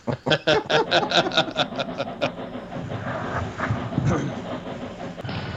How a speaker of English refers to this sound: Train crash.